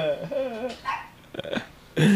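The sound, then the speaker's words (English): Dogs bark in short bursts, with a few whining, yelping calls early on and a louder bark near the end, and some voices mix in. “Shut up, dogs.”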